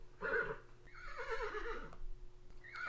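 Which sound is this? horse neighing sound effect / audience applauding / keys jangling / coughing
horse neighing sound effect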